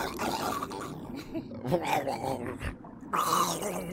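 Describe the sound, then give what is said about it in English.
A voice makes a drowning sound effect: loud, continuous gurgling and growly sputtering for about four seconds, with a couple of brief breaks and bubbly, rough bursts. “That was a drowned sound effect.”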